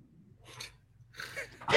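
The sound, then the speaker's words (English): Someone clears their throat in two short, raspy bursts separated by a brief pause, with a sharper, louder onset cutting in at the very end. No talking. “Go ahead and clear your throat a little bit there, dude.”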